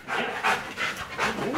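A male dog pants rapidly, a steady rhythm of breathy huffs in quick succession, with no other sounds around it.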